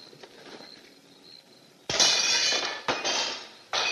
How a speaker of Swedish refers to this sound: Där de ska krossa fönster i ett hus. What, you gonna throw a rock?